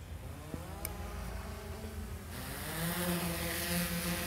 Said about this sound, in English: All right, Evan, let's start this drone up.